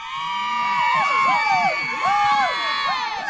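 A crowd cheers and whoops continuously, with many overlapping high-pitched voices rising and falling in excited shouts, loud and sustained throughout without any single voice standing out.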